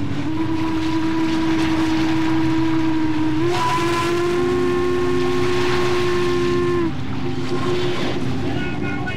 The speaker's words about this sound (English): And from there, they bought tickets and boarded a steamboat headed up the Ohio River.